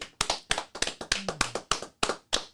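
Sharp hand claps for Brandon Johnson, vice mayor of Wichita, Kansas: about a dozen in under three seconds, landing in an uneven rhythm with brief pauses between bursts. Each clap is crisp and fairly loud, with no voices.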